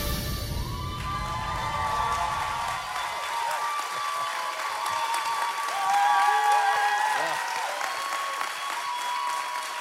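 A large audience at a service applauds steadily and loudly, with scattered cheers and whoops rising above the dense clapping for about ten seconds.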